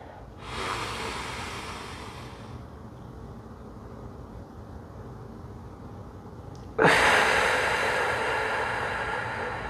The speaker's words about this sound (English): I'm going to take a couple of breaths.